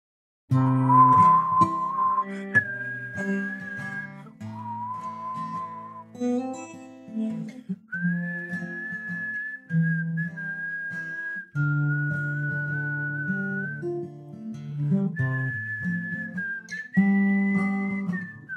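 A clear, sustained whistled melody carries a slow song, rising and falling through long held notes, with soft instrumental accompaniment playing underneath throughout.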